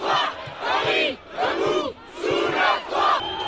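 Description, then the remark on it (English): Deputies in France's National Assembly, the lower house of parliament, yelling in loud, rhythmic swells, about four chant-like waves in a few seconds, with faint thumps of desks being banged beneath the shouting, as Prime Minister Elisabeth Borne announces the pension reform will be enacted without a vote. “Deputies yelling, banging on desks.”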